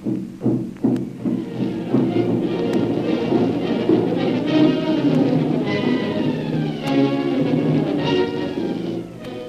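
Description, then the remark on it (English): Tom-tom war drums beat in the jungle, thudding in a quick cluster of beats at the start, then pounding sporadically under a dense, sustained wash of layered tonal sound that stays loud throughout. “Tom-toms beating in the jungle.”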